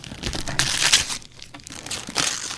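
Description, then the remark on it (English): Christmas wrapping paper printed with robots and presents crinkles and rips as a gift is opened, in several quick bursts, loud rustling and tearing with brief pauses between, no voices. “Here we go with the opening.”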